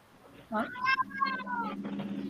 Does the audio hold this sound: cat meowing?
yes